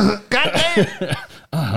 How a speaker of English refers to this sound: Let me clear my throat.